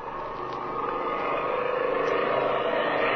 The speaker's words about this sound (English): when the drone of an airplane is heard approaching the ranch.